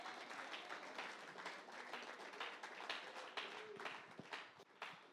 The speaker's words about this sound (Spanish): Denle el aplauso a Dios.